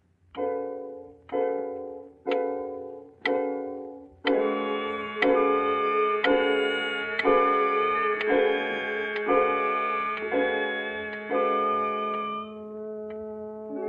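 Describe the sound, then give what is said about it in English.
A clock ticks steadily and fairly loudly on its own, each evenly spaced tick ringing with a bright, resonant tone that blends into a sustained hum after the first few beats. “You continue to pace the room, glancing occasionally at the clock.”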